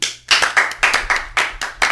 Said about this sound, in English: I think this is where people clap.